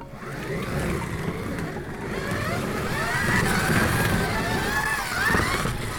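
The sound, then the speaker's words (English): Two toy slot cars, one of them a DeLorean, race each other around a track, their small electric motors whining steadily and rising and falling in pitch over a continuous rattling rumble, fairly loud throughout. “So we've got a DeLorean from Back to the Future, and we've got Kit, the car from Knight Rider. Should we see who's fastest?”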